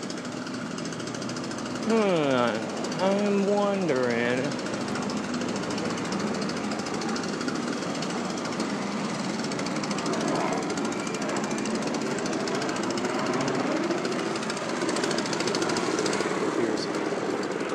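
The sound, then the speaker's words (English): A continuous, loud rattling jackhammer pounds away amid street construction noise, with brief overlapping voices near the start and steady machinery throughout. “So I'm coming across a construction kind of spot here, and I'm wondering.”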